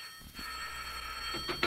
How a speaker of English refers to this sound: Because it wasn't more than half an hour after she had shot me that the phone by her bed rang and she answered it in person.